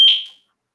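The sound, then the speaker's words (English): A single sharp, high-pitched fire alarm beep, loud, that rings briefly and decays within half a second, followed by silence. “There's a fire SPD alarm going on.”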